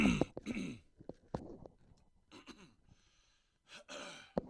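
A quiet run of coughing and throat clearing with gasping breaths from a radio host on air during a show's final segment on ESPN Tucson: a few harsh bursts at the start, scattered short coughs, then two strained fits near the end, with no talking.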